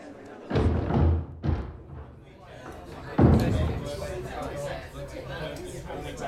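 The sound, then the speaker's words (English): A heavy door thuds shut with a loud bang, preceded by a couple of softer knocks, then a low murmur of an evening crowd's voices continues. “Oh, thank you for the door,”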